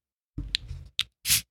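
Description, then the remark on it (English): A drink with a due date of August 8th, 2022 being opened: low fumbling and handling, two sharp clicks, then one short, soft hiss of escaping gas that fades quickly, barely fizzing, with no lasting fizz. “It's like barely fizzing.”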